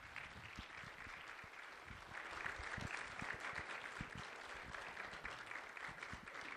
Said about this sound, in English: If you enjoyed that, give them one more round of applause.